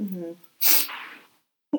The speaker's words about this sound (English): I said I was going to sniffle a lot on this. That's fair. It's the season. Before we started, I was like, if I sniffle a lot, I'm sorry.